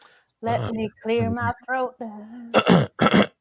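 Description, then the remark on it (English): A man clears his throat: a few strained, voiced grunts followed by two harsh, raspy bursts near the end, with no other sounds around. “Let me clear my throat.”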